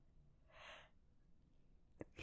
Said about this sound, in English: I thought you were going to sneeze. No, I'm sorry. I just yawned.